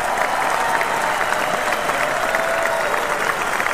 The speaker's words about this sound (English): I'm gonna give myself a round of applause because I was exactly right.